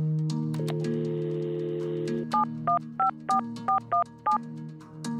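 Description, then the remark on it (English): A telephone call being placed: a steady tone holds briefly, then seven crisp touch-tone beeps are dialed in a quick, uneven sequence, clear, with no voices. “There must have been hundreds of phone calls before this one.”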